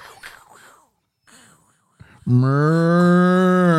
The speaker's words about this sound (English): What in the world is going on with that cow? I don't think we can air that. I don't. That was inappropriate. It was an inappropriate utter.